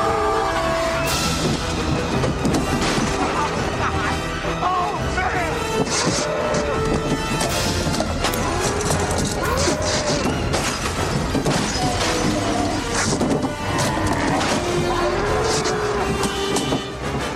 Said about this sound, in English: No way that just happened. My car is completely destroyed. I swear I've seen a lot of stuff in my life, but that was awesome.